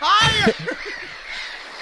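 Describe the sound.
A loud, harsh bird squawk bursts out at the start, followed by a few softer chirps and faint voices murmuring in the background.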